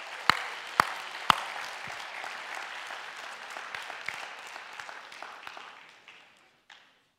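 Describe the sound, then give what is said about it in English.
An audience at a church service applauds to cheer for the kids, opening with a few sharp, loud claps before settling into steady dense clapping for several seconds, then thinning out and fading, with a last scattered clap or two. “So for the rest of us that are watching, let's cheer for the kids one more time.”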